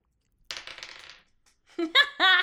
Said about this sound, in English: I'm going to try my traitor dice one more time.